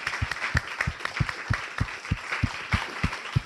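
An audience at the end of a panel discussion applauds the panelists, a dense wash of clapping with a steady, rhythmic beat of louder claps running through it at a brisk, even pace, moderately loud and without any voices.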